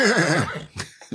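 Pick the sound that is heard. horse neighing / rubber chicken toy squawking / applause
horse neighing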